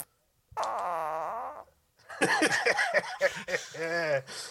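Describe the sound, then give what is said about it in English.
A voice imitates fart noises, starting with one long, wobbling blat and then a burst of shorter, sputtering ones, loud. “farts.”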